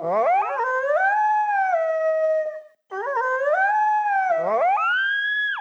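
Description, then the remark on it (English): A loud, eerie creature call made from a Tasmanian devil recording blended with dog and coyote yelps swoops upward into a sustained howl, breaks off briefly, then repeats and rises again at the end. No talking. “It's a combination of sounds, including a Tasmanian devil recorded for Willow with dog and coyote yelps from the Skywalker library”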